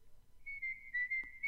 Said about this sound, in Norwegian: Da plystrer vi litt. Gjør det.